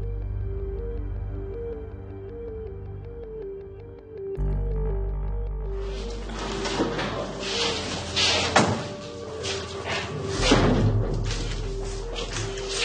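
Shuffling feet and rustling movement as a man is led out of a police car, broken by a few thuds, over a low repeating two-note tone and steady background noise.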